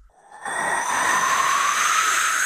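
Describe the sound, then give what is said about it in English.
A loud, steady rushing roar of an elevator coming down the shaft from above swells in after a brief quiet moment and holds, going faster and faster, like a bullet train approaching, with a bright whistling hiss on top and no voices. “It's going faster and faster. Something like a bullet train's coming from above.”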